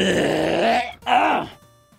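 A person clears their throat in two voiced, groaning bursts: a longer low rumble, a brief pause, then a shorter rising one. Both are fairly loud, with nobody talking over them.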